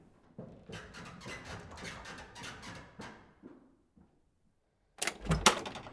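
A door is opened, with a sharp latch click and a brief knocking clatter, preceded by a few seconds of shuffling, rustling movement and a short pause of near silence.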